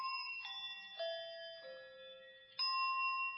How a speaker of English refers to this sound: If I shake in eight directions, I can make each of eight bells ring. If I shake down, one bell rings. If I come up, a different bell rings. In a bell, out a bell, down a bell, oops, down a bell, up a bell, in a bell, and out.